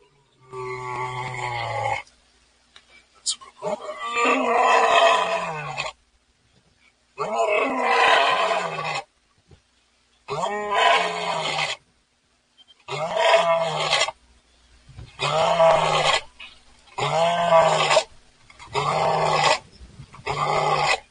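A voice imitates a lion's roar over and over, about ten throaty, growling bursts of a second or two each, separated by short silences, fairly loud with a rough, guttural tone.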